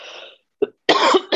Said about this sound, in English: Sorry, I have these coughs.